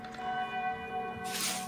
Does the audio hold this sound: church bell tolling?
yes